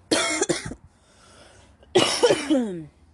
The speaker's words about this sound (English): And I'm sorry if I'm coughing so much. These are kind of like my first few hits of the day, so my lungs are adjusting to the situation.